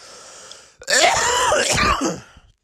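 A single rough, wheezy cough, harsh and raspy for about a second and a half, trailing off into a strained breath with a faint background hum before it.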